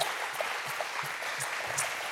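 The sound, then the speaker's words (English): Steady applause from a panel audience for the hosts, the Nix Company: a dense even patter of many clapping hands that holds at moderate loudness throughout with no voices over it. “How about a round of applause for them hosting us?”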